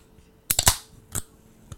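A can of sparkling water is cracked open next to a microphone: a quick cluster of sharp metallic clicks, then a brighter pop with a brief fizzing hiss, and one faint tick after. No one speaks.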